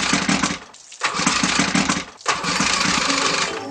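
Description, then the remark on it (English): A motorboat engine cranks and roars to life in repeated bursts, cutting out briefly twice before revving again, loud with a rough mechanical rumble and no talking. “If somebody spotted me on the water, they would never be able to start the boat to chase me.”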